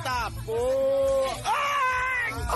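A person cries out in two long, strained screams of pain, loud, each held for nearly a second before trailing off, with a short breath between them.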